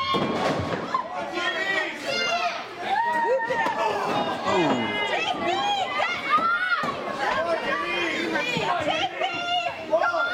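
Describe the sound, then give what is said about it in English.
A wrestling crowd cheers and shouts steadily for the wrestler Moonshine during a match, a dense wash of many overlapping voices that stays loud and unbroken, with a few sharper calls rising above the roar. “Crowd definitely behind Moonshine.”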